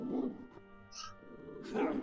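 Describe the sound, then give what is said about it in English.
A dog gives a few short, high-pitched yips and whines in quick succession, clear, with no one talking over it. “Did I intimidate the doggy?”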